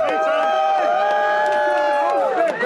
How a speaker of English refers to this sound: A group of supporters greeted him. They were cheering.